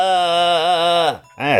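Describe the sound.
A voice sings a long, wavering sustained note, drops away, then gives a shorter swooping note, trying to harmonize with a chime. It is fairly loud, with no other sounds.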